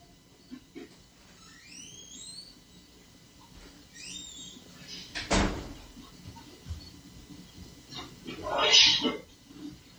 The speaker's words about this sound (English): Okay, so what you hear on that is like you can hear like footsteps, you can hear breathing, you can hear what almost sounds like talking, then you can hear a door open and close, and then you can hear what almost sounds like a sneeze or a cough